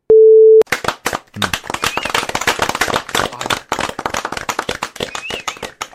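On the Anthony B. Watts Show, a short steady electronic beep gives way to a burst of dense, crackling applause, many sharp claps overlapping irregularly at a fairly loud level for several seconds, with no voices.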